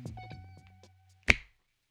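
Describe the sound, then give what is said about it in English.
A single crisp, sharp finger snap, made to wake a listener, follows a moment after some faint ringing tones die away, then quiet. “When I snap my fingers, you can wake up.”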